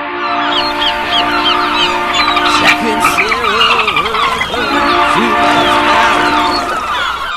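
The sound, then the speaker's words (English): A steady, droning tugboat whistle sound effect from Sound Bible holds throughout while seagulls call over it in repeated squawks and cries, with a brief spoken word partway through. “And we may have used an extra Sound Bible sound. Tugboat, Whistle, and Seagulls.”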